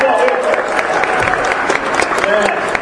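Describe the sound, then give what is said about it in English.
An audience at a comedy show claps steadily and loudly for a comedian, a dense wash of applause with scattered cheers mixed in, sustained without a break. “Hey, we'll run with applause”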